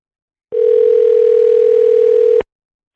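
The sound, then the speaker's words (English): A single steady electronic ring tone of an outgoing phone call, holding one even pitch for about two seconds before cutting off abruptly, clear and alone with no voices. “Well, look who decided to pick up the phone.”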